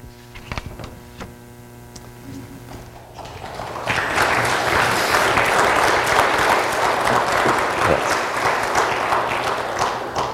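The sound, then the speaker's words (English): A steady hum with a few scattered claps gives way, a few seconds in, to loud sustained applause from a large group that continues to the end. “You always beat me to the clapping, all right?”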